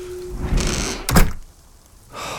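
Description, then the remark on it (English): A door, blown by the wind, swings and shuts with a single heavy thunk, preceded by a rushing, scraping sweep and followed by a brief hush. No one speaks. “Once again, I tried propping the door open, but the wind made that impossible.”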